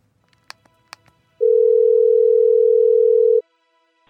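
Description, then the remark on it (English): A few soft clicks, then a single loud, steady ringback tone over a phone line as a call is placed to the Fernandez residence, holding for about two seconds before cutting off with a sharp click. No one speaks. “Anyway, I'm gonna call Angel and let him know we're coming over and see what time is good.”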